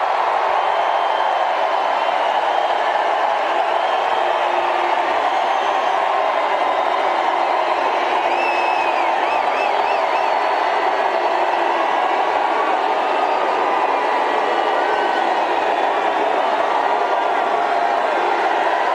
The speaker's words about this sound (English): I know the crowd's going, Cruz, but that'll get spun as Ted Cruz booed at his own rally.